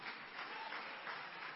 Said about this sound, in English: My goodness. I've got about 7 claps in the room. That's very nice. Thank you.